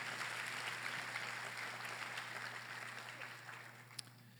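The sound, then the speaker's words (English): A church audience breaks into a round of applause to show agreement with the preacher, many hands clapping in a dense, steady wash that tapers off slightly toward the end, with a low electrical hum underneath and no talking. “If you are in agreement, give a round of applause.”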